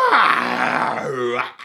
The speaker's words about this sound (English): And it sounds like kind of a big cat screaming.